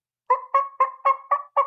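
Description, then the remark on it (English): A basic turkey call is demonstrated, sounding six quick, evenly spaced yelps, each a short raspy mid-pitched note imitating a hen turkey, fairly loud with no one talking over it. “Like they sell for just a basic turkey call and it goes.”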